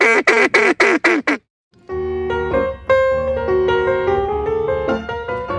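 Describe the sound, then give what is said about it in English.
A duck call, being practiced at night, sounds five quick, loud quacks in a rapid descending run, then falls silent before music starts and carries on to the end. “The Swamp Witches stayed up, drinking wine, laughing, and, of course, practicing their duck calls.”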